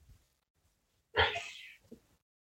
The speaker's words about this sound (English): Could you just hear my sister sneeze? Bless you. Bless you, brother.